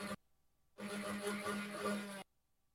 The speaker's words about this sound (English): Damn. Bro. Sounds like a fucking motorcycle going off.